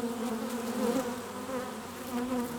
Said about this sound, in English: Before long, I was enrolled in beekeeping school and lodging a microphone in the mouth of a beehive for the episode For the Love of Bees.